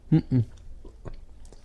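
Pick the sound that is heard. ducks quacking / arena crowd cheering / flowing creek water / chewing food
chewing food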